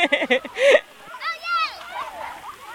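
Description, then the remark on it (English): Bursts of splashing water mix with children's excited squeals and calls at a water fun day held to help kids cool off in the hot summer of 2018 in Baldwin County, lively and overlapping, the shouts rising and falling in pitch over a few seconds. “Those were the sounds from a water fun day organized to help kids cool off during the long, hot summer of 2018.”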